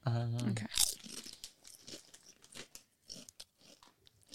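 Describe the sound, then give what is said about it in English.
A brief voiced hum, then a packet of XL cheese crisps rips open with a sharp tear, followed by irregular crunching as the crisps are bitten and chewed. “They're soft and crunchy at the same time.”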